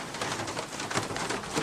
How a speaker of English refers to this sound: And there's some rain.